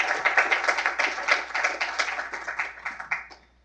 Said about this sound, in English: And one final round of applause for both of them.